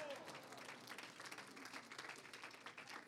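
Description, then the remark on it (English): A church audience claps hands together in a dense, continuous wash of applause, steady, with faint voices mixed underneath. “Now turn to your neighbor as you're clapping your hands to the Lord and say, roar.”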